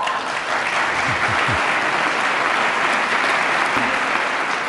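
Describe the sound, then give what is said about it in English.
Sustained applause in Congress, largely from Republicans, after a line about defending life at every stage of its development, a dense, even wash of clapping that stays loud and steady for the whole stretch without pausing. “I was going to say there that that got a huge round of applause from Republicans when he talked about defending life at every stage of its development.”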